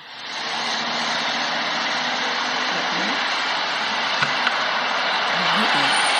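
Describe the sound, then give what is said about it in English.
The "Big City" sleep sound played from a baby sleep app: a steady, dense wash of big-city ambience, like constant traffic hum and engine rumble, holding an even level throughout, with faint murmuring voices underneath and a couple of brief ticks. “Do you want Big City sound?”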